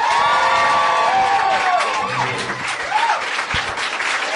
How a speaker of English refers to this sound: Please put your hands together for our very special guest, John Hodgman.